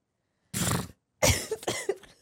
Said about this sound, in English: I get a dry cough.